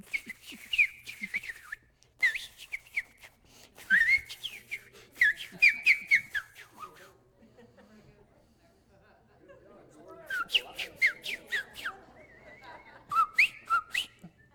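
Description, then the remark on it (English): A person whistles a tune in worship of the Lord, in short, bright melodic phrases separated by brief pauses, clear, with a faint low murmur of background sound in the quieter gap. “Have you ever noticed I worship the Lord with whistling up here sometimes?”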